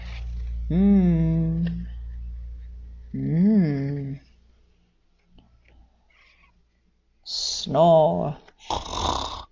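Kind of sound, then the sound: vocal imitation, voice imitating snoring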